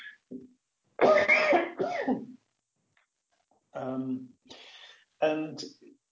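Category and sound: human body sound, cough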